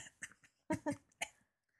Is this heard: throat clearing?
yes